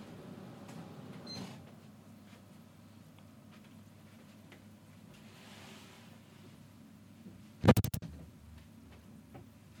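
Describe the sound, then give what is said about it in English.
An office door is pushed shut with a sharp thud and brief rattle of the latch, following several seconds of quiet room noise and faint shuffling. “I just have to go and close my office door so I can hear you better.”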